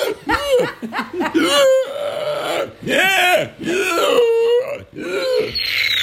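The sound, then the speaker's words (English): A person does a loud vocal impression of a male pig, a string of rising and falling grunting squeals in several short bursts over about six seconds. “That's a good pig impression. Do it one more time.”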